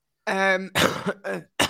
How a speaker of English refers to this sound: so good, he's coughing. They're that good. They're that good, but he's coughing. Oh, he's still coughing.